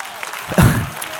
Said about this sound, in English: Now you're not clapping well enough.